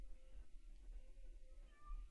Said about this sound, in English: Is she meowing or is Sebastian outside?